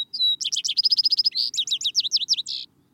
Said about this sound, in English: The song of the sparrows, faith.